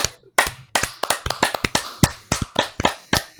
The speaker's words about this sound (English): Come on, I think I deserve applause.